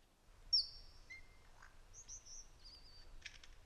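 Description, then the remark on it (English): A lyrebird mimicking small, noisy parrots: a series of high, clear whistled notes followed by a brief burst of harsh, rapid-fire screeching, fairly faint over a low rumble of background noise. “That rapid-fire screeching sound. The lyrebird mimicking parrots.”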